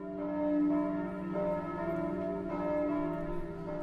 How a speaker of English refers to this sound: And we hear the bells ringing at one point, and so it seems like there is no hope and that there may not be any people left.